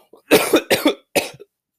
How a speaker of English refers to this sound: I need to cough. Hang on 1 second.